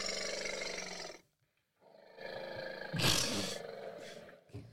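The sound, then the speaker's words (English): A voice imitates an elephant's trumpeting in loud, roaring bursts, broken by a short silence and then rising into a harsh, bright blast near the end. “Nice elephant.”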